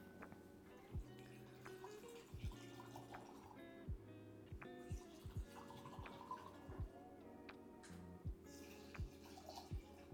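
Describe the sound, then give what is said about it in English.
Liquor is poured into a big cup without ice, with a steady run of gurgling glugs and splashy drips repeating for several seconds. No one speaks. “Sweet sound with pouring liquor.”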